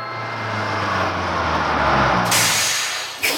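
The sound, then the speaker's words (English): A bus idles with a low engine rumble, then a loud hiss of air brakes bursts out near the end as it pulls to a stop, the last bus leaving Gravity Falls. “Last bus leaving Gravity Falls. All aboard.”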